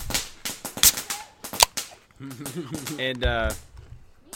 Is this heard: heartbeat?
no